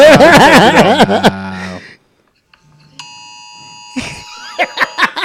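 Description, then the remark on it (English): An iPhone Amber Alert emergency tone: a steady, harsh, buzzy alert sounding for about a second after a warbling, wavering sound and a pause, followed by a few short sharp bursts. “So definitely on your iPhone, we all heard this”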